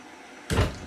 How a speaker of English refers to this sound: You kick open the already open prison door. Oh, it's already open? So I just... It's just cracked open a little.